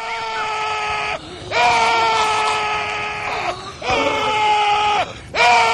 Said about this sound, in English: Like the fat guy that's the Drop Johnson or whatever at the near the end of the boxer where he starts yelling. I'm like, he will not stop yelling for.